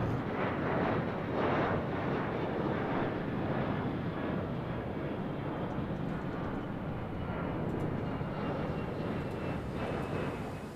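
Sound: airplane in flight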